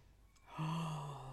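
A single deep breath drawn in, a broad airy rush with a faint low voiced tone underneath, sustained for about a second with no talking.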